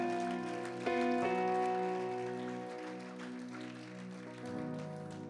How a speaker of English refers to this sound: Praise the Lord, everybody. I think we ought to give that hand clap to the Lord.